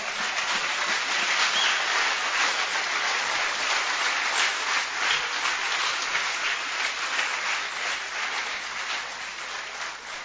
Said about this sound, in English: Why don't you clap your hands for Jesus, somebody?